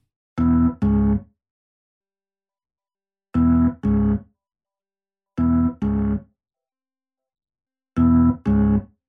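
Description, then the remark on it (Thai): A woodcutter chopping trees, echoing from a distant forest, sounding as four pairs of quick, loud, tonal thunks, each double strike followed by a pause, with no one talking. “คงจะเป็นเสียงคนตัดต้นไม้นะจ้ะเสียงสะท้อนมาจากป่าไกลๆแต่ไม่เป็นไรหรอกนะคนตัดต้นไม้ไม่มาถึงบ้านของเราหรอก”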